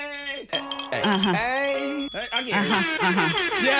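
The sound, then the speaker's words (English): Cowbells clank and jangle in quick, uneven metallic strikes while excited voices whoop and call out over them in a celebration of Antober, the bright clatter staying steady and loud throughout. “Where are the bells? The cowbells!”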